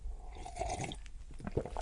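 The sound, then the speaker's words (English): Quiet, wet slurping of caffeine-free coffee: soft sipping and mouth noises over about two seconds, with small squishy bursts near the end and no talking. “If you can hear me slurping, I'm slurping caffeine-free coffee.”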